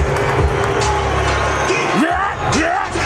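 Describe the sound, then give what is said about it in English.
A large stadium crowd on its feet roars continuously, a dense wash of cheering and babble, with a couple of loud rising whoops cutting through near the end. “The energy in this place just shot through the roof. It's electric. It's absolutely electric. It's nice to see people on their feet.”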